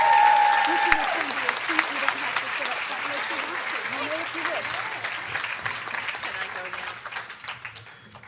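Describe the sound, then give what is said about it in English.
A crowd breaks into sustained applause for newcomers as they return to their seats, dense clapping filling the whole stretch and slowly tapering toward the end, with a faint murmur of voices beneath. “So everybody give them a round of applause as they return to their seats.”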